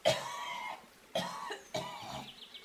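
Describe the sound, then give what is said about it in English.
A person, stumbling back onto a bank, retches violently in three harsh, strained heaves. The first is the longest, followed by two shorter gagging bursts with a raspy, throaty edge, and no talking. “Letting go of the scarf, you stumble back onto the bank and retch violently.”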